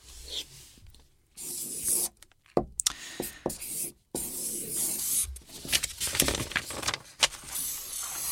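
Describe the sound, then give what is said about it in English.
Scratchy squeaks of a Sharpie marker pen writing down a score on a piece of paper, in quick irregular strokes with brief pauses between them, no voices over it. “We have a piece of paper and a Sharpie pen. Write down your score.”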